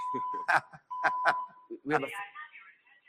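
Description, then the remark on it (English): A steady, high electronic fire alarm tone sounds in sustained stretches, broken by short bursts, while people talk over it. “I think we're okay, but Nicole LaPointe, can you, technical difficulties solved for this beautiful fake fire alarm?”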